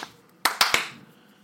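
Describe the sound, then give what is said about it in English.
Three quick hand claps made with the hands over the head, in an even, rapid rhythm, each sharp and bright with a short ringing tail, followed by quiet. No one speaks. “Oh, I thought we were doing over the head over claps.”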